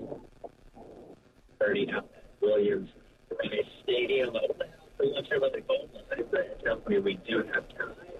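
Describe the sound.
A radio call-in show's caller speaks through a thin, band-limited phone line while the caller's own radio in the background replays the broadcast on a delay, so the voices overlap and echo in a muddled, continuous stream.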